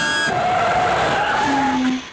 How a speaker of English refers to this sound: Air brakes.